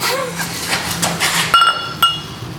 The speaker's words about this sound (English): The Tingles. This is ASMR from Brasserie. You can hear the bubbles. Do the next one, the last one up against the microphone.